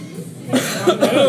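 A close, loud cough bursts out after a brief quiet moment, followed by a couple of rougher hacking coughs that blend into a throaty, voiced sound.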